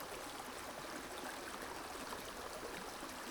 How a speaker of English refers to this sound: the apex of this sound, so that this river is surrounding you and moving through you. Feeling as if you are seated in the center of this river, safely, comfortably.